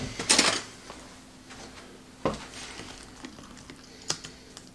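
Light clicks and scrapes of a utensil stirring rice in a single-use plastic food container before microwaving, with a busier scraping burst at the start and a few isolated taps afterward, all without any talking.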